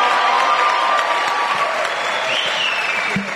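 A church audience claps steadily and loudly for a few seconds in applause for First Love Church UK, a dense wash of applause with faint tonal ringing and scattered cheers underneath.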